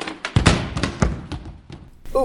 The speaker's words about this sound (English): That chair doesn't look very sturdy. You fell right through it. Yeah, maybe because it's a little rotten.